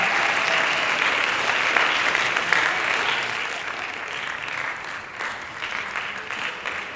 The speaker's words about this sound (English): The sudden roar from the small crowd pulled my attention away for just a second.